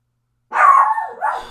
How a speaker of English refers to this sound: Sorry, my dog's barking at the neighbors.